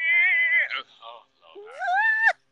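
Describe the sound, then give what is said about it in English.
A person's voice mimics a cat in heat, letting out two loud, drawn-out, wavering yowls, the second one sliding upward in pitch before cutting off. “She be all up in the way like a cat in the heat.”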